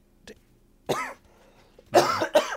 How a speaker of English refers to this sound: I still have a cough. It's like, it's kind of weird. I have like a tickle in my throat. So, like, while I was talking, I could feel it getting worse and worse. Until it was just too much.